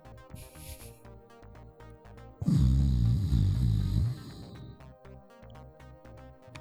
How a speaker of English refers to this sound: snoring